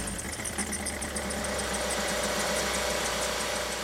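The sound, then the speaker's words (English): A small fuel-powered compressor engine runs steadily at an even idle, with a continuous mechanical chug and rattle that stays fairly loud throughout, no voices. “So imagine this compressor, right? It's like a small engine.”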